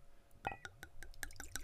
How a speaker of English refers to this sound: As always, we got to get the ritualistic wine poured in. You know, get the vibration set up right.